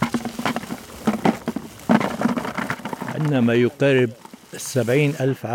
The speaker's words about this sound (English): The cones are collected into sacks and then poured into buckets to be taken away.